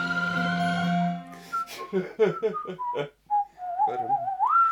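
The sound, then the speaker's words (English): Someone whistles a few short, clear notes that glide upward at the end, moderately loud, following a burst of talking and a sustained hummed tone at the start. “And I'm also going to say no whistling.”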